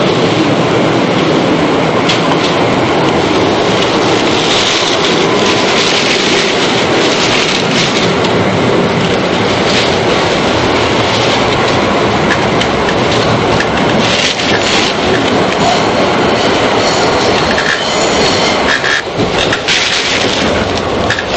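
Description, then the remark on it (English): A loud, steady rumble of a tram rolling along rails, with continuous grinding and rattling over the full length and occasional sharper clunks, with no talking. “this one just stops in the middle of the road like a tram, and so it has steps at the side to get off, which blend in with the tram when it's moving, so that it can go down in the tunnels.”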